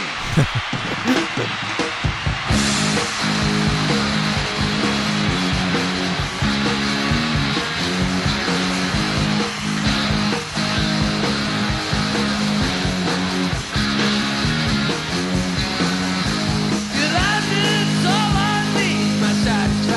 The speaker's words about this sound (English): And this specific version contains his favorite guitar solo.